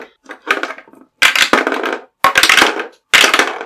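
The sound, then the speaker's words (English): Dice clatter and roll across a hard tabletop in three or four loud, rattling bursts separated by brief pauses, with no talking. “All right, let's raise some dice.”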